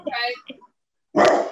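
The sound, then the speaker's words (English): A female dog barks at someone at the door in short bursts: a couple of quick, tonal barks, a brief silence, then one louder, harsher bark. “I like the last bark there when you said, "Have you stopped?"”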